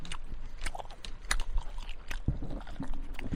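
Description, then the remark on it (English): Moist chewing of a large mouthful of spicy beef jerky, with irregular crunchy bites and wet mouth clicks repeating over a few seconds, loud, with no talking. “I'm gonna chew off so you don't hear.”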